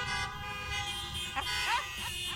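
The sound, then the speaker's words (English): Car horns blare in a steady, layered honk that lasts the whole moment, loud, with faint crowd sounds rising briefly beneath it, as people at a morning worship service honk their horns one time. “Honk your horn one time.”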